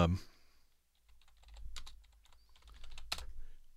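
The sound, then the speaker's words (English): Rapid clicking of a computer keyboard being typed on in short bursts by a news presenter checking a breaking news story, fairly quiet, with a brief louder clack near the end and a low background hum throughout. “Clicking along, here we go.”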